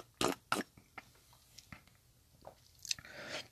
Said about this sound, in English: been drinking my hot toddies, which you probably hear me slurp on throughout the rest of this podcast.